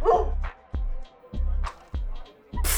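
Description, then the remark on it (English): A dog barks five times in a steady, evenly spaced rhythm, each bark short and fairly loud, with brief quiet gaps between them and no talking; the dog is being challenged to a game of beer pong at a party. “If this is the best you guys have got, I'll crush a dog. Come on, Fido, go ahead.”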